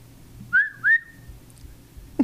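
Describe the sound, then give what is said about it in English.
A person whistles two quick, sharp notes in succession, each sliding upward then trailing off, imitating the signature whistle heard in a producer's rap songs, clear against a quiet low background hum, with no talking. “Let's hear your whistle.”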